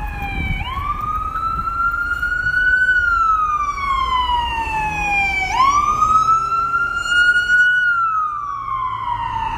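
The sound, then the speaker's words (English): A loud emergency vehicle siren wails in long rising and falling sweeps, two full cycles, steady over a low rumble of street traffic in New York, with no one speaking. “Sorry, hold on, the sirens.”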